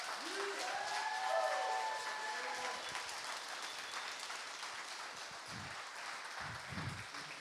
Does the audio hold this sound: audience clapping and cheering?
yes